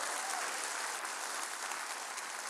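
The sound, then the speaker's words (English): Steady applause from a church audience for the worship team, a dense crackle of many hands clapping at an even, sustained loudness throughout, with no voices standing out. “So, and can we just give the worship team a round of applause?”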